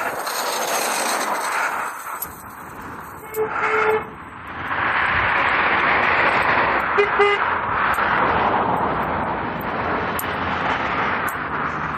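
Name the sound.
car horn honking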